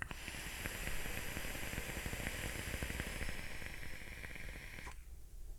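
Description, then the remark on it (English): A steady, dense crackling hiss with a deep rumbling undertone, like a vape coil sizzling continuously for several seconds, then cutting off abruptly near the end. “It's a good, deep rumble of a crackle.”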